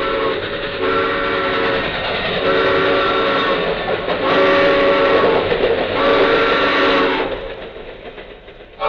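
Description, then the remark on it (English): A train thunders past on railroad tracks, its horn blaring in long sustained blasts over the heavy rumble and clatter of the cars, before the noise begins to fade away. “The train! Look out!”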